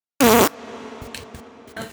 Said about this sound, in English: Did you also hear a fart? No, we're gonna boost that in post though.